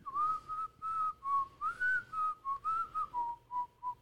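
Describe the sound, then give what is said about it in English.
A person whistles a breathy, airy tune by sucking air in, in a quick string of about a dozen short notes that waver slightly in pitch. “I don't know how to whistle unless I suck in.”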